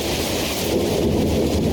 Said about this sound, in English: I travel to Kibaranyaki location in Githongo, located in the outskirts of Meru town. It's a rainy morning.